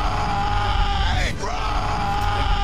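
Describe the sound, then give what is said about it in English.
A loud, drawn-out yelling call from a single voice, sustained for nearly three seconds with a brief dip in the middle, imitating the character Finn desperately screaming for Rey. “All he does is scream for Rey for 3 movies.”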